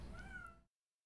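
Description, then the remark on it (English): A cat lets out one short, clear meow, fairly steady in pitch, cutting off abruptly into silence after about half a second. “Now you heard one of our cats.”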